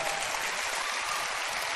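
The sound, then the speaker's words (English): A church audience claps for God in a dense, steady wash of applause, many hands overlapping continuously at a fairly even level with no voices standing out. “Clap for God, somebody.”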